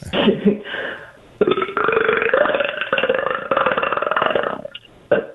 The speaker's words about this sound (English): I think it's a nervous burp.